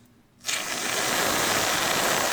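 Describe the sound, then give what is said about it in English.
After a brief quiet moment, a blender motor starts abruptly and runs at a steady, loud, whirring roar with a harsh, noisy texture that holds without pause to the end. No one speaks. “Now, may I just say that blenders, they have such that like electricity smell, man.”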